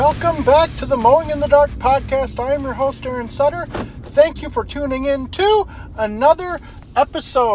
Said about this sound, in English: I apologize for the truck noise. It is very loud and there's other things that are rattling around in my truck. I apologize for that.